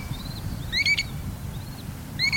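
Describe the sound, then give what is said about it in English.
Calls of an American dowitcher, a plump, brownish shorebird: quick, high piping notes come in short bursts, some faint and some louder and doubled, over a steady low rumble of wind or surf. No one speaks. “There are two species of American dowitchers, the long-billed and the short-billed.”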